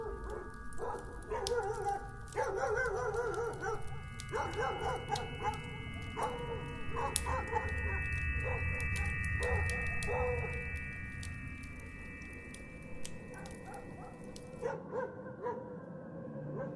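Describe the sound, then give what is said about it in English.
Several wild dogs bark and yip outdoors in the snow in a ragged chorus, some calls rising into howls and whimpers, layered and overlapping over a low steady rumble. “Hearing those wild dogs barking out there in the snow didn't mean that much at first, but then I remembered something.”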